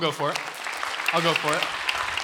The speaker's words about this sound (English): That's worth a clap.